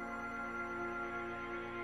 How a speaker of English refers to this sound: The door was locked, but the sound of the phone was definitely coming from inside.